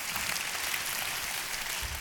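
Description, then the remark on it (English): A crowd claps steadily for two seconds, a dense, even patter of many hands with no pauses and no voices, heard at moderate volume. “Come on, you clap your hands for that.”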